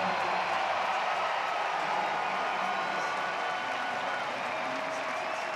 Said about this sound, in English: It was a bullet right back up the middle. And now the Reds will run for him. Listen to the crowd.